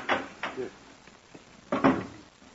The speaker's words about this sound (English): just put it in the clothes closet and close the door. That should muffle it.